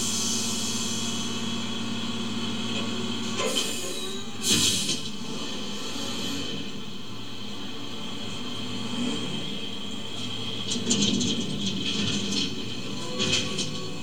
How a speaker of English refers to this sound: We open up with a dump truck picking up a dumpster.